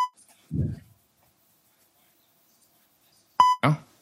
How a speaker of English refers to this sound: When you hear the beep, we're good. Ready? Let's do it.